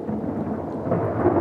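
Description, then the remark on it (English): A big thunderstorm with lightning passes over a campsite around 2:30 in the morning. A deep, continuous rumble of rolling thunder sounds over a steady, hissing downpour, with wind whipping a tent. It is fairly loud and unbroken throughout, with no voices. “This really big thunder and lightning storm came through.”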